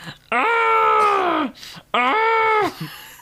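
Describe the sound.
A voice imitates screaming played over a car loudspeaker in place of a siren, driving through streets at night: two loud, sustained wailing cries. The first is long and the second shorter, each holding a steady high pitch before trailing off.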